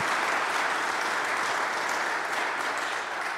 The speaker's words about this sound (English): Thanks for indulging me. Yes, she deserves a round of applause, y'all.